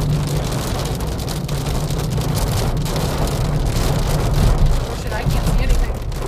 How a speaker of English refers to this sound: So it's raining. Yay. You can probably hear it.